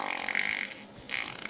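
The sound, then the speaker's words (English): A buzzy, sputtering fart sound effect plays in two fairly loud bursts separated by a short pause, with no talking over it. “You make more money and you get to fart on him.”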